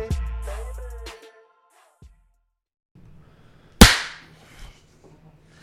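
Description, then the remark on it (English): A single loud, sharp hand clap cracks out after a low humming tone fades and a short stretch of quiet, followed by a faint rustle. “That was an aggressive clap.”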